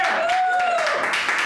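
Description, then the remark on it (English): A crowd claps and cheers for debate contestants as they are introduced, in a steady, dense burst of applause, with a high whistle-like tone gliding up and then fading partway through. “I like how the women got most of the applause there.”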